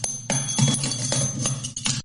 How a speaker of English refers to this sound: Broken bell. Ring a ding ding. Ring a ding ling a ding.